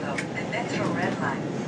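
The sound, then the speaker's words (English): Steady low rumble of a train's interior, a dense unbroken roar holding the same level throughout, with a voice faintly present over the noise announcing the train's final destination. “This train's final destination is North.”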